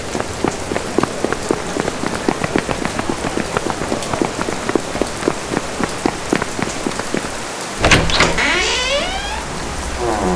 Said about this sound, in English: It's really starting to rain now.